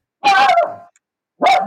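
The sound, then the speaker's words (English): A male dog barks loudly twice, a long harsh bark trailing off, then a second sharp one after a short pause, clear with no talking. “Well, it's funny because he's quite an loud barker.”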